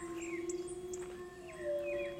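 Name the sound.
wolves howling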